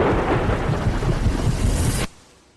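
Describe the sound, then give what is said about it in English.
Heavy rain pours down with a deep, rolling rumble of thunder underneath, loud and steady for about two seconds before cutting off abruptly into near quiet. “When extreme weather threatens, you want your windshield wipers to handle whatever the elements bring your way.”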